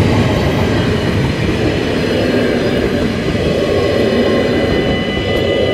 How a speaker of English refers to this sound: It's another double-decker train. I hope I'm not going to get the same thing as, half an hour ago. Okay, waiting for the lights to turn off, and it is now safe to cross.